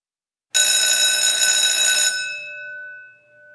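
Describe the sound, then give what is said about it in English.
A loud electric school bell rings the final bell continuously for about a second and a half, then cuts off and its metallic tone hums away as it fades. No voices accompany it. “When the final bell rang, I did something I had never done before.”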